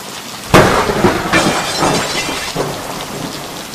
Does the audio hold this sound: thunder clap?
yes